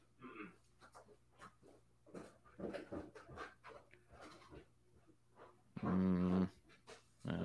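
Dogs pant in quick, breathy bursts, then one lets out a loud, high whimpering whine near the end before the panting resumes.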